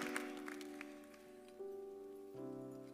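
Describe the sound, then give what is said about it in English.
Scattered clapping from the Regeneration audience on Mother's Day, giving the Lord a hand of applause, fades out over the first second beneath steady sustained organ-like chords that shift pitch twice and continue alone to the end. “Give the Lord a big hand of applause.”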